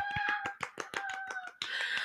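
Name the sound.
inserted clapping sound effect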